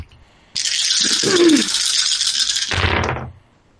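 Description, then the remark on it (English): Dice clatter and rattle steadily for about three seconds, a dense, bright rattling of several dice being shaken and tumbled to roll attacks for a Scorching Ray spell cast at level 5, ending with a short scatter as they settle. No voices. “Picking which particular dice I want to use to hopefully not get fucked over.”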